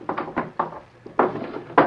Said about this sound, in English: He stepped to his desk and unlocked the drawer.